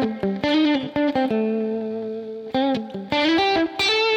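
An electric lead guitar plays a short melodic phrase in one steady overdriven tone, with quick picked notes, a long sustained note held in the middle, then a fast run of notes. No talking.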